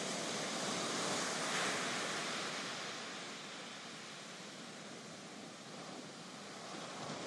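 Steady ocean surf washes onto a beach, a broad continuous hiss that swells slightly early on and then settles, fairly loud with no voices.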